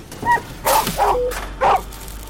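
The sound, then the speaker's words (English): A small dog gives four short, sharp yapping barks in quick, uneven succession, the first one softer, with no voices and only a quiet background between them. “Looks like a dog in a box to me, surrounded by herons.”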